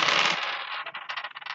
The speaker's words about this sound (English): But then we saw a really closely fought melee between Halor and Bostic. Let's listen to that. A lot of dice.